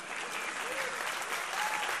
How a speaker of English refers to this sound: If you're here for the first time and yelled, I applaud that. I love that.